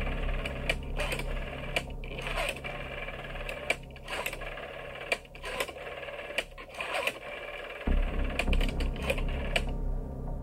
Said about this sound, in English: Picking up the phone, he dialed the number.